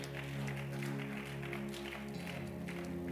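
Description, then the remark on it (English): A church audience claps steadily for about three seconds, a dense patter of many hands over a low, constant hum, with no one speaking. “But you will clap again.”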